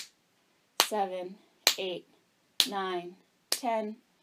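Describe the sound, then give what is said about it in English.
Four sharp hand claps mark the rhythm of a breathing exercise, landing at a steady pace about a second apart. Each clap cues a strong exhale through the nose, and each is followed at once by a short voiced sound, with silence in between. “And I'll clap to indicate every time the diaphragm lifts up.”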